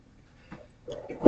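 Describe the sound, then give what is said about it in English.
A person sneezes once: a short rising breathy intake builds into a sharp, loud burst of air at the very end. “Bless you.”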